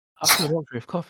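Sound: sneeze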